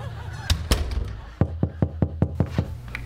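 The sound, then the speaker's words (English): Knocking on a neighbor's old garage door at Christmas after no one answered the front door: a couple of loose thumps, then a quick, evenly spaced run of about seven loud, hollow raps, with no voices. “Tried the front door, nobody answered, so thought we'd give the old garage door a try.”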